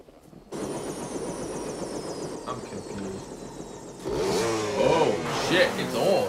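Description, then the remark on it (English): A dirt bike engine in the woods drones steadily, then revs up and down in several quick surges near the end as the rider pops a wheelie, loud, with a higher whine running through the first part. “Oh shit, no one pops a wheelie like that in an open field. Helicopter, woods, dirt bike.”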